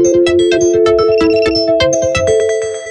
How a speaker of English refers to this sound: Now, I have that really obnoxious sound so that I can tell when I've maximized a window in case my speech is not working.